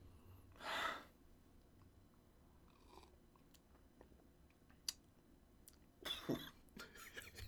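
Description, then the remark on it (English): A small, quiet cough after sipping a strong beer with a liquor-like burn, with a short breathy burst early on and another rougher one near the end, separated by near-silence and no talking. “A little cough.”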